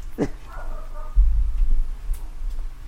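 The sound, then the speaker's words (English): A dog barks at the neighbours, a sharp bark followed by a shorter, softer yelp, then low rumbling handling noise fills the rest of the moment. “Hold on, let me get this dog.”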